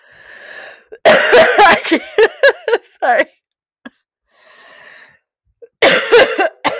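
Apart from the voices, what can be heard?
coughing fit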